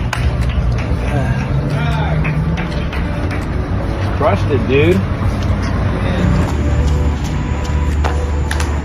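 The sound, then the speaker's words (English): A car rumbles steadily along a road, its low engine drone running beneath excited voices and chatter from people at the finish of the 2022 Miami 100 ultramarathon race weekend. “Come over this way. We got a car.”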